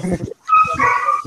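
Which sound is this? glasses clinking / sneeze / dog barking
dog barking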